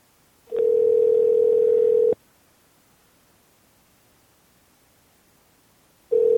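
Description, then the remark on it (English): A steady, clear telephone dial tone sounds for about a second and a half while redialing a dropped caller, cuts off into a long silence, then starts again at the very end. No one speaks. “I will ring Pam right back. You'll have to forgive the dial.”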